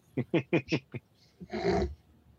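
cat vocalizing

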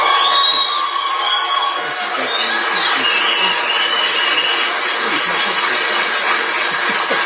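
crowd cheering

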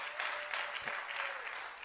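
audience clapping

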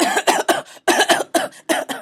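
coughing fit

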